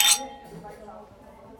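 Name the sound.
glasses clinking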